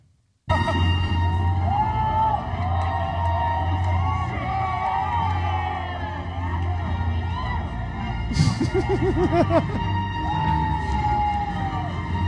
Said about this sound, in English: And then they're cheering when the lights go down and yelling stuff out. I've got a little audio clip just after the movie started and they're still fucking going for it.